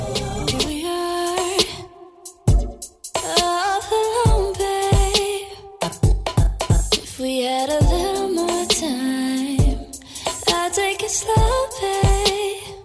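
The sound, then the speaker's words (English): A song plays with a woman singing sustained melodic lines over a steady beat of crisp percussive hits, briefly dropping out twice before the full arrangement returns. “Well, and you can hear, so like, she's singing.”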